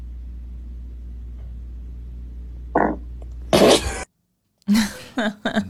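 Over a low steady hum, at the end of a 2-minute-13-second otherwise silent recorded response to a French class question, a short burst is followed by a louder, longer raspy fart. After a brief silence, voices break out in loud bursts that sound like laughter.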